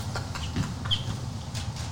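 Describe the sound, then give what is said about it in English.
A chicken clucks a few short times in quick bursts, heard through a video's playback over a low, steady background rumble, with no one talking. “That's a chicken, bro.”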